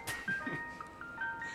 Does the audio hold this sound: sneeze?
no